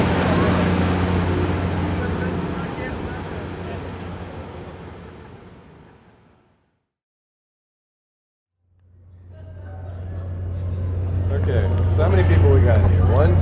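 A big, slow yellow track-cleaning vacuum train roars loudly with a steady low drone, fading away to a brief silence before the heavy machine noise swells back up loud.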